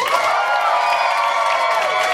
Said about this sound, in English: Carmen Lynch, your round one champion, ladies and gentlemen. Let her hear it. Big round of applause for all of your round one competitors.